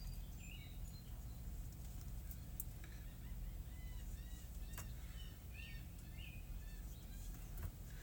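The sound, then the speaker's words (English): A flock of poultry birds calls continuously, with many short, high chirps and peeps overlapping over a steady low rumble. The calls sound soft. “I hope these birds are enjoyed.”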